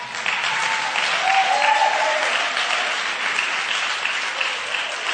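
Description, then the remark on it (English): Sustained applause from an audience clapping for what Jesus did for a woman who had been blind for 3 years, a dense steady wash of many hands clapping at once, fairly loud and even throughout, with no talking over it. “You're not clapping for me. You're clapping for what Jesus did for a woman who had been blind for 3 years.”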